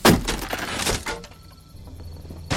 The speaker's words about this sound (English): swings the axe.